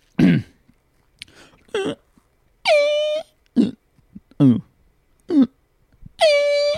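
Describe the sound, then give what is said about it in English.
A rapid series of about eight fart sound effects played from a Fart World phone app, short sputtery blasts alternating with longer buzzy, brassy toots, loud, played one after another with brief pauses and no talking. “Because the fart world has premium too.”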